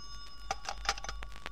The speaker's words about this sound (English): That's your phone. It's probably your son.